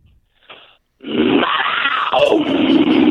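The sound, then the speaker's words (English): A man's voice imitates an angry panther growl: a short breathy lead-in, then a loud, sustained, rasping snarl over two seconds, rough and low with gritty upper edges. “Give us one more growl.”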